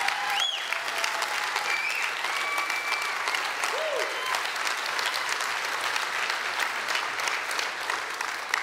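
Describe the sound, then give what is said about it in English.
A church audience breaks into sustained, dense applause that holds at a steady loudness for about nine seconds, with a few faint high cheers or whoops rising briefly above the clapping. “Everybody claps because we know the need.”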